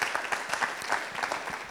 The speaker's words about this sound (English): Can we give God's word a hand clap?